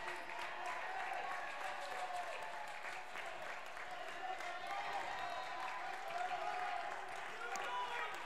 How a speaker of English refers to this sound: What a win for Pope. As they beat Brentwood, and they are getting applause. Leaving the ice.